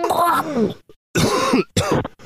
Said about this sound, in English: Sorry. I have a very manly cough. There I go again. There I go.